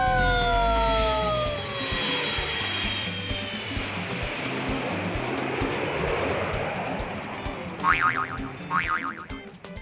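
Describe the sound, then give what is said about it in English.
A cartoon-style vehicle takeoff effect as the engines are started: a falling whistle sweeps into a steady rushing whoosh, then two quick springy boings pop up near the end. No one speaks. “Oh, sha, Tommy Rig, seat belts on. Engines on. Away we go!”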